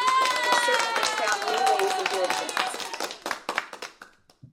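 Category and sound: crowd, applause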